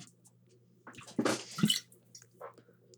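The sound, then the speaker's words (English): Someone takes a quick swig of water: a short slosh and slurp, then a gulp, over a faint steady background hum. “takes a swig of water.”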